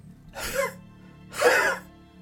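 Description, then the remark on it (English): Two short, dry sputtering coughs from a man, about a second apart, the second a bit louder, with no talking around them. “And you can hear a little bit of a sputtering, dry cough echoing out from him.”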